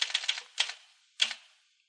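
Typewriter clatter: a quick run of crisp key strikes, a short pause, then a couple more clacks ending with a heavier strike that rings briefly before silence. No voices.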